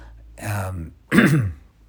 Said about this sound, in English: See, I had to clear my throat. Sorry about that.